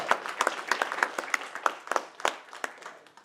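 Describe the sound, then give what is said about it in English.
A crowd claps together in steady applause, a hand clap of praise to Jesus at a Thanksgiving church service, many sharp hand claps overlapping in a brisk, bright patter at moderate loudness for a few seconds, with no voices over it. “Can we give him a hand clap of praise this morning?”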